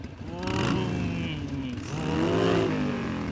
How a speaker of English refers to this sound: For example, this is your standard motorcycle exhaust.